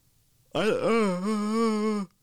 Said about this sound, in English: Yawning.